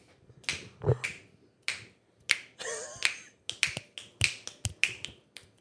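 A quick, uneven series of about a dozen crisp finger snaps, some sharper and louder than others, with a brief rustling noise partway through and no one speaking.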